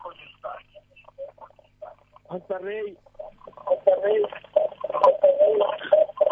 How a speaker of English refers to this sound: Ntela wehlise umsakazo wakho because we are hearing an echo this side.